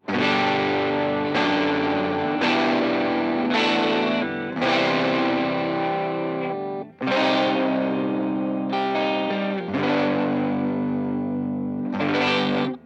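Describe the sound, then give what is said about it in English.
Distorted electric guitar on humbucker pickups strums a series of thick, sustained chords with a chorus-like shimmer, each chord ringing out loud before the next, with no talking. “And then back to the humbuckers.”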